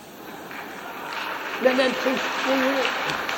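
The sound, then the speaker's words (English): An audience at a talk breaks into clapping, a dense, steady patter of many hands that builds gradually and holds, with a few murmuring voices rising faintly underneath. “Please, would you mind not clapping?”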